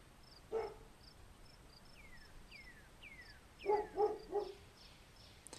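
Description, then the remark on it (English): A dog barks once, then three more quick barks a few seconds later at night, over a steady night chorus of chirping crickets and a few short descending calls. “You hear barking of a dog.”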